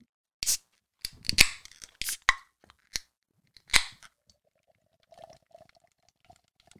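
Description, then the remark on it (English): A can of Left Hand Brewing beer being cracked open: a series of sharp metallic clicks and snaps, one louder pop near the end, then a faint, steady fizzing hiss as the bubbles settle. No one speaks. “So let's crack it open.”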